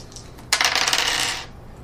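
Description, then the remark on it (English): Dice drop onto a table with a sudden bright clatter, rattling and ticking rapidly for about a second before settling into silence. No one speaks. “Did that fall out of my hand?”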